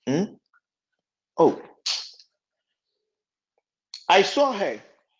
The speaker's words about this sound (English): So you people will not just, the doctors on the page, won't you prescribe something for me for this this cough thing to go? You people take delight when I cough and I struggle.